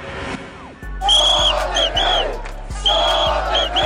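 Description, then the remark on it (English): A loud protest crowd shouts and chants angrily in unison, many voices rising together in repeated bursts over a steady low pounding rhythm, starting after a brief quieter moment. The crowd is furious about Prime Minister Boris Johnson's move to shut down Parliament for five weeks over Brexit. “But this crowd, furious about the Brexit bombshell dropped today.”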